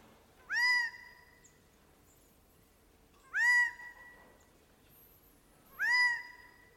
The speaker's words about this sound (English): We will now listen to a bird, and you will tell us which friend it is that is saying hi. Okay, wait. Bird number one, please.